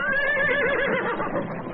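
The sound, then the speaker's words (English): A horse whinnies loudly, a sustained wavering neigh that carries for nearly two seconds with no other sounds around it, as cow ponies balk at a corral gate. “Confused, the ponies balk at the gate.”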